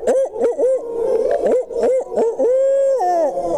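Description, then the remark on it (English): One side of an audience at a turkey hunting event hoots together like owls in an owl-hooting contest, many overlapping voices with wavering, rising and falling calls, loud and continuous for a few seconds. “They have some good old Owl Hooters over there. Let's see if this side can beat them.”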